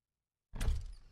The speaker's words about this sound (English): opened the door and stepped onto the small balcony.